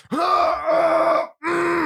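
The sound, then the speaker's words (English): A person lets out a loud, raspy battle cry, a strained screeching yell held for about a second, then a second shorter burst after a brief pause. No speech. “I gotta do a battle cry really quick.”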